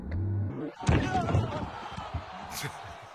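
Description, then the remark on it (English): Logan Paul's frog splash, phone in hand, slams onto a table onto wrestler Roman Reigns with a loud, sharp crash, followed by clattering debris and a roaring crowd beneath it. “My favorite is the sound when he hits it.”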